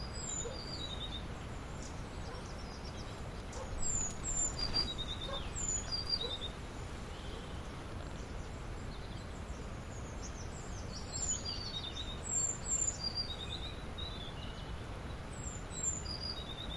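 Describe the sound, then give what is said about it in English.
A great tit sings its ringing two-note song, repeating the paired phrase several times over a steady hiss of outdoor background noise. “So that ringing two-note song, that's great tit.”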